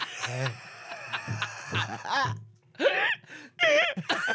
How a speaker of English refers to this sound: I'm trying to hold my breath to get rid of these hiccups.